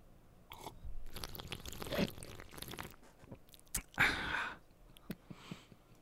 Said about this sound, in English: So let's taste the scotch. You ready to hear me taste scotch, guys?